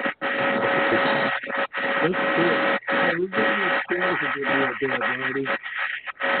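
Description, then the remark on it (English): Harsh, continuous static crackles over a muffled phone or radio line, nearly drowning out a voice that talks underneath; a faint steady whine runs through the hiss with brief dropouts. “Were you getting bad static there for a little bit?”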